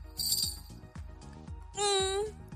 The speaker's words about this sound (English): Using my magical bell.